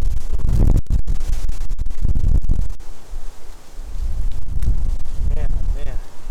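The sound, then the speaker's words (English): Loud, gusty outdoor wind roars and thumps against the microphone, with heavy low rumbling bursts and brief dropouts, and faint voices barely audible beneath the buffeting. “It is windy.”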